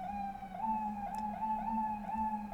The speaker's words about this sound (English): I never know if you can hear quite all of the sirens, so I just leave a little room for them, if you can.